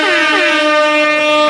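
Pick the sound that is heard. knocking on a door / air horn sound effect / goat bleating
air horn sound effect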